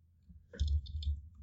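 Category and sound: household object, typing on a keyboard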